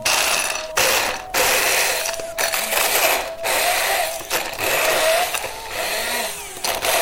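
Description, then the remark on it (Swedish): A stick blender grinds roasted, skinned hazelnuts with a tablespoon of sugar in a small vessel into hazelnut paste, a loud, harsh motor whir in several bursts with brief pauses between, its pitch wavering as the load shifts. No one speaks. “Och nu ska vi göra någon form av hasselnötspasta. Ja. Med en blender, en mixer, en stavmixer.”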